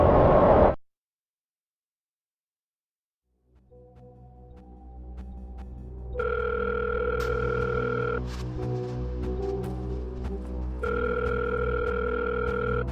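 A telephone rings twice before being picked up, each long electronic trill separated by a pause of a couple of seconds, over a low steady background hum after a brief burst of noise and silence.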